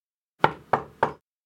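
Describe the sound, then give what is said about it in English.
Three firm knocks on a door in a steady, evenly spaced rhythm, clear, followed by silence. No voices are present. “I turned on the TV and began flipping through channels when a few minutes later, I heard a knocking at my door.”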